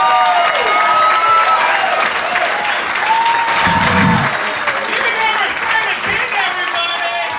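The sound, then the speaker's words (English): A large audience applauds loudly and steadily for several seconds, a dense wash of clapping, with scattered whoops and voices rising through it. “Hey, I didn't get the clap, I got the applause, all right, that's enough for me.”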